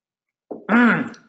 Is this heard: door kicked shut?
no